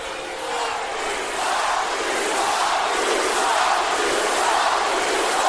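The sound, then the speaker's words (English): A capacity arena crowd jeers and roars with hostility, showing no sympathy, a dense, loud and steady wall of voices that swells slightly and holds for several seconds with no single speaker standing out. “Well, no sympathy at all from this capacity crowd.”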